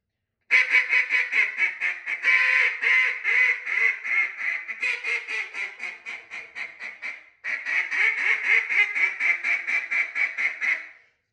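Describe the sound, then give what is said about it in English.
A duck call sounds a long run of rapid hen quacks, a greeter call used to work the ducks, starting loud and gradually tapering softer and slightly slower, with a brief pause before a second loud sequence resumes. “You're going to transition into your hens, which is okay. Basically working the ducks.”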